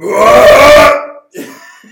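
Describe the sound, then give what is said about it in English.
A loud, rough belch-like grunt made by a human voice imitating an arcade game character, lasting about a second, followed by a shorter, softer voiced sound. “That sounded like a colossal belch.”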